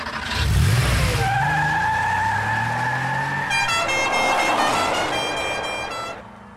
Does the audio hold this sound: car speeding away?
yes